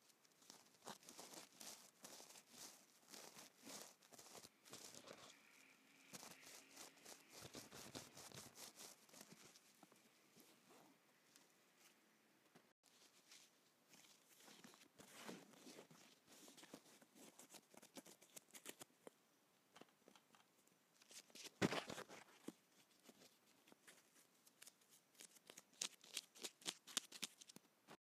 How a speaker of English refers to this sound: First, we did the keyboard, perfume, bulb, and I think we'll go with the hairband. I think let's begin with that.